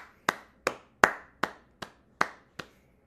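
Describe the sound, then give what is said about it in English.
Applause for comedian Todd Glass, made of seven sharp, evenly spaced hand claps in a steady rhythm, each crisp and bright with a quick decay, heard alone with no voices. “I was going to say LA staple, but please give it up for Todd Glass, everybody.”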